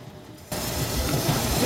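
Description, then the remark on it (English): After a brief quiet moment, a steady hiss of bubbling broth rises, a hot pot boiling hard at a restaurant table in Taichung, Taiwan, cooking thin slices of pork shoulder, with a continuous rush of steam and small pops throughout. “After just a few seconds, in a boiling hot pot, it's a perfect bite.”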